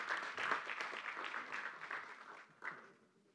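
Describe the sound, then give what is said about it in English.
A church audience breaks into applause for parents, a dense, steady patter of many hands clapping at once that holds evenly for a few seconds before thinning out and fading. “Well, just smile at them, clap for them, bless them.”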